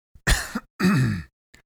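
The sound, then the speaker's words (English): Two harsh, throaty coughs in quick succession, fairly loud, the second drawn out and raspy, followed by a small faint click. “Why are my coughs subtitled in Chinese?”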